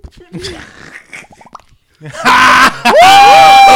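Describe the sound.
After some brief murmured talk, a man lets out a loud, shrill banshee-like scream in two close, drawn-out bursts, the second swooping upward and holding a piercing wail.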